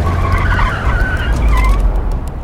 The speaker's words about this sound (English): The truck driver hits the gas and overtakes the car. And then he cuts across Tyler.